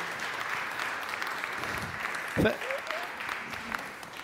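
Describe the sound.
An audience applauds with dense, steady clapping that fills the whole stretch at a moderate level, and a brief voice cuts in partway through.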